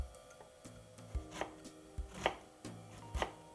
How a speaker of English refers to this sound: To begin with, I'm going to dice up one medium-sized white or yellow onion.